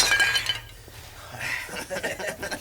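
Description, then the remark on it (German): A bottle or glass smashes and shatters, bright tinkling fragments scattering in two bursts, followed by scattered clinks as shards settle. “Pass auf die Scherben auf”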